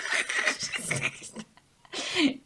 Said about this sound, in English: Cough. Oh. Take that one right out of there.